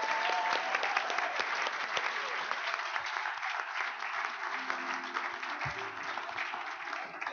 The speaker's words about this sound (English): clap yourselves, ladies and gentlemen, clap yourselves.